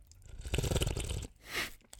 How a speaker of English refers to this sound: slurping sounds.